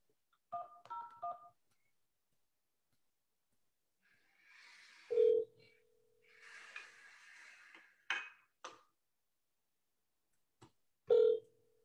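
A quick burst of three touch-tone beeps as extension 101 is dialed on a company phone line, followed by noisy line hiss and a steady tone as the call connects, then clicks and another short beep. No one speaks.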